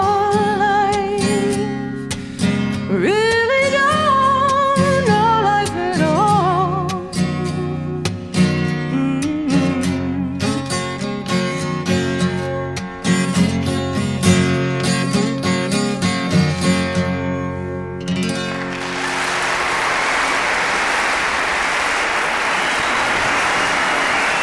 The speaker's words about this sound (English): But I guess she's still getting clapped. That's amazing. It's all applause. Is the rest of the track just applause?